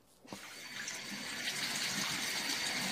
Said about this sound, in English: I mean, or you could maybe just clean yourself up old school with just, you know, maybe a tub faucet.